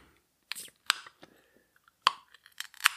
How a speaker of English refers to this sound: And now I'm struggling to open this can. Okay, I found a nail clipper to open the can with.